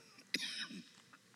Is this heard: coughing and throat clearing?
yes